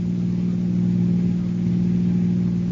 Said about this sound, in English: And as the car crossed the border, the police started to close in.